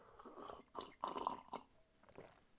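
Wet slurping sounds of someone taking a big sip of hot coffee with skim milk from a white porcelain cup, a few short noisy pulls clustered together, then a quieter swallow-like tail, with no talking.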